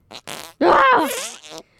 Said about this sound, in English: And it's the Stinky Fart right, Pod.